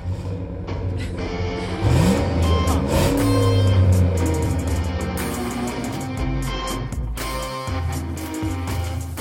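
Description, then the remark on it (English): A car engine turns over and fires up, then revs into a loud, throaty roar that holds steady before settling into a rumbling idle. No one speaks. “She put her phone back in the cup holder and started the engine. The ridiculous roar made her grin again.”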